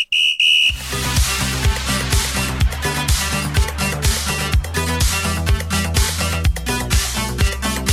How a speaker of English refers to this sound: Referee whistle noise here.